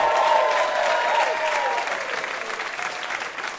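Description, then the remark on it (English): A steady burst of audience applause for VIP guest Steven Strogatz, dense clapping that stays loud for a few seconds before easing slightly, with faint cheering or voices mixed into the crowd noise. “Have a round of applause for our VIP, Steven Strogatz.”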